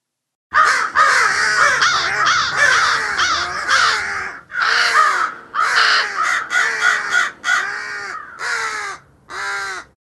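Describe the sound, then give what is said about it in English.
Roosters crowing loudly, a dense run of overlapping harsh calls followed by several shorter bursts with brief pauses between them, with no voices. “could you drop in some hearty crows here?”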